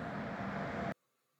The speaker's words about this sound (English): for recording that whilst clearly walking alongside a road. I think he's driving.